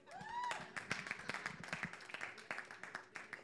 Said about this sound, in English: Can we give the Lord a round of applause?